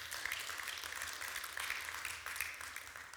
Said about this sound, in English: Come on, somebody. Can you give him a great round of applause today?